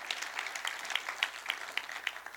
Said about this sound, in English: So if you're up to that, put your hands together and clap, which gives me a chance to transition.